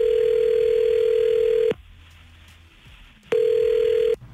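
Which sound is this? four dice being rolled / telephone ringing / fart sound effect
telephone ringing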